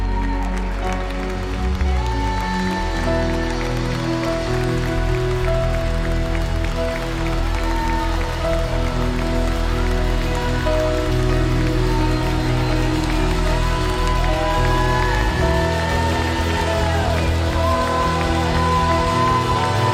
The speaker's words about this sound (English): Can we give God a hand clap of praise for his goodness towards us?